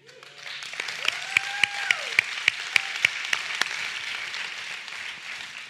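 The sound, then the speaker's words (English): One person claps for himself about ten times in a quick, steady rhythm, each clap sharp and distinct over a broad background hiss. A faint voice-like tone rises early on, and the noise lingers after the clapping stops. “That was a compliment to me, so I clapped for myself.”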